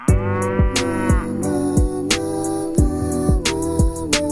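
Upbeat pop music with a steady, punchy drum beat and sustained synth tones, while a voice sings long, drawn-out moos imitating a cow over the track.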